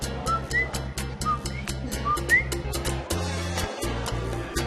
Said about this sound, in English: The mascot of Puerto Rico is a little tree frog. Coquis, and they chirp at night. So the male goes, coo, and she goes, ki. So that's how we get the name Coqui.